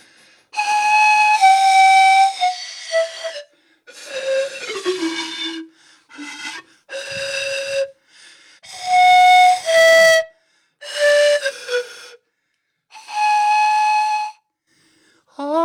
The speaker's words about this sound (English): what do you guys think about the pan flute? All that or I don't know about that? While you're deciding, let me play you a little ditty. It's called Athena's Fury.